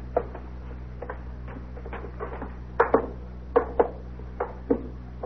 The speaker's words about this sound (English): Fancy door knocker, huh? Don't know why people have them. No one ever uses them. Decoration. My wife made me buy one, too. She says it makes the door look neater.